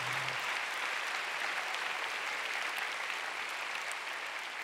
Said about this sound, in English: Heal in the name of Jesus. Come on, let's give the Lord a big clap.